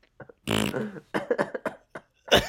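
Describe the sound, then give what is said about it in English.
A loud, buzzing fart noise, likely made with the mouth, rips out for about half a second during a room tone recording, followed by a string of short, choppy vocal bursts that sound like laughter. “It's just someone farted during the room tone.”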